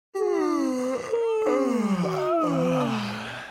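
A long, loud yawn into a microphone, a drawn-out groaning exhale whose pitch slides downward in a few wavering stretches, with no talking.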